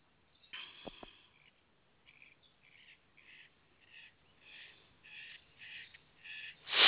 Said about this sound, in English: I'm going to hold a crystal or two and close my eyes. And then you hear me shuffling through my crystals.